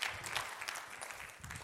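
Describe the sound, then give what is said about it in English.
A church audience gives a clap offering, a dense, steady patter of many hands that holds at an even level for the whole moment, with no voices over it. “Give them a good clap offering, amen.”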